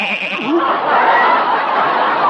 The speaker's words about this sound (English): Doc brought his goat in here. He's coming up here. Arthur, go away. Get off the platform, you little ham.